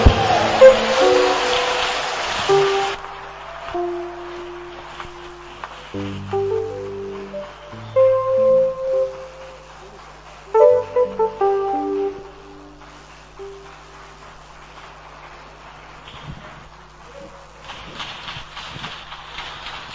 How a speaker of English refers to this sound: Clap, keep clapping for our sister. Those who are not clapping, you are somewhere.